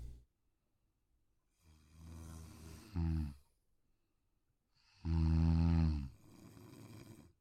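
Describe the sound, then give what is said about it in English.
A person snoring: two loud, rasping snores separated by a quiet pause, each a rough, rattling inhale lasting a second or more. “Yeah, you don't hear him snoring?”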